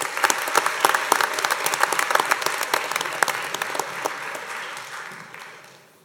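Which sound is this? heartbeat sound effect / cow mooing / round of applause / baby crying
round of applause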